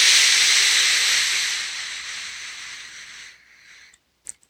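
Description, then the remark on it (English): A long, deep breath drawn in through the nose during a guided breathing exercise: a steady, breathy hiss that slowly tapers off over a few seconds, then near silence broken by a couple of faint clicks. “And now on the inhale, coming up from the earth into the lower belly.”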